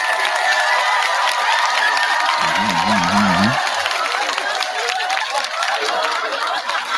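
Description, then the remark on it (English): A loud, dense crowd applauds and cheers without pause for several seconds, with a brief wavering whoop rising out of the clapping partway through. “Round of applause for all you guys for sticking with your boy since day motherfucking one.”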